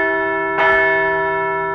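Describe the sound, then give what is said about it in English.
A large bell, rung to celebrate a baseball team's win, rings with a loud metallic clang partway through, its rich tone humming and sustaining steadily throughout, with no voices. “A really nice win, and we'll ring the bell once again.”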